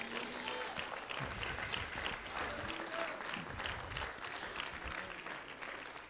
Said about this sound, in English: Oh, give him a hand clap if you know what I'm saying.